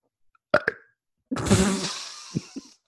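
A couple of quick throaty clicks, then a drawn-out, rumbling burp after drinking wine, lasting over a second, ending with two soft gulping pops. No talking.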